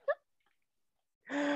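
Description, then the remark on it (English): A single short, sharp hiccup near the start, then a pause before a sustained voiced sound begins. “When I laugh too hard, I hiccup.”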